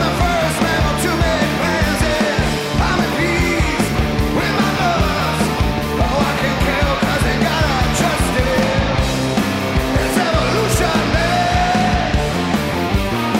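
screamed vocal

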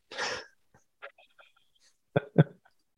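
coughing to clear throat

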